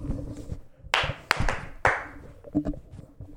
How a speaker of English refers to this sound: Right, hit the other record. We'll clap first.